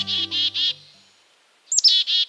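A black-capped chickadee calls: three buzzy, evenly spaced "dee" notes, a brief pause, then a sharp high chip followed by more buzzy notes. No one speaks.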